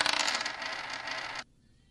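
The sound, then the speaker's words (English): Loud clattering rattle of dice being rolled across a hard surface during a game, lasting over a second before stopping abruptly into near silence. Nobody speaks. “Hold on, let me add up my dice.”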